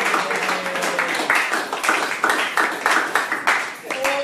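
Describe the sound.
A crowd applauds steadily for several seconds, a dense, even wash of many hands clapping at once, with a few voices and cheers mixed into the noise.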